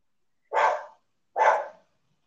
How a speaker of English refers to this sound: Yeah, that's the opinion of the dogs.